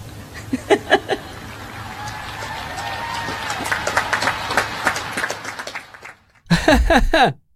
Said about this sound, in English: So it's funny, if you look down, I think she was expecting that to be a huge applause line, and then it doesn't happen, and then she kind of spurs in, she's like, ha ha ha, and she tries to do it, and then you hear a sort of polite applause,